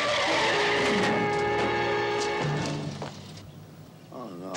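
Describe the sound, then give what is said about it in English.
Car tires screech loudly for about three seconds, a sustained high squeal with engine noise beneath, then fade out as a brief wavering tone follows at the end. “She's probably been hit by a lot of cars. Look out!”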